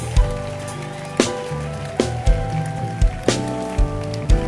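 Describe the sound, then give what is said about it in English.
A church audience claps along over music, with sharp, heavy beats landing about once a second and steady bass and tonal notes sustaining underneath a dense, crackling layer of hand claps. “Oh, clap your hands for them.”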